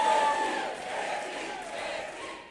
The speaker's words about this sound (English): To this, she was met with a roar of cheers.